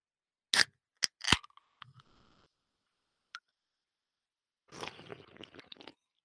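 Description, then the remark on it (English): Mouth noises made as an ASMR moment: a few sharp crunchy bites in quick succession, some smacking, then a longer wet slurping burst near the end, with no talking. “It's all right until you slurp it. It just sounds like shit when you start slurping it.”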